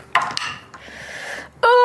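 Dice clatter across a hard tabletop in a few sharp clicks followed by a brief rattling roll, rolled for an acrobatics check in a tabletop role-playing game and landing on a 3, a 1 and another 3 for a total of 7, then a loud, high-pitched voice cuts in at the end.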